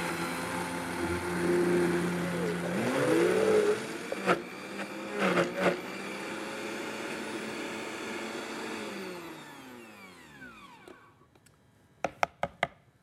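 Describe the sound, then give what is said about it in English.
A high-powered Vitamix blender whirs loudly for about ten seconds, its motor pitch shifting as it churns frozen banana, then winds down and stops, followed by a few sharp clicks and taps. “Put the cover on my Vitamix blender here. And let's give this a whirl.”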